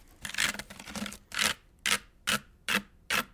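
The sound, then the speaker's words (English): A wicker shopping basket creaks and rubs as it is carried, first in a dense cluster of scratchy creaks, then about five evenly spaced creaks in a steady swinging rhythm. “A shopping basket carried by Laura.”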